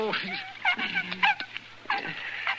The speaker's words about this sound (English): He's an awful sick dog. You gotta help. Yeah, what's the matter? Somebody shoot him? No, he's been up against some wolf bait.